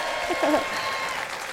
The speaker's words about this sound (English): Did the studio crowd love you? She's like waiting for the sound to stop before she starts talking. No, I love the clapping. It's great.